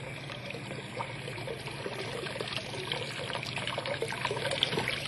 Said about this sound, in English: Well, at least I'm not sure, but that water, there ought to be a lot more water than that coming through the gate, a whole lot more.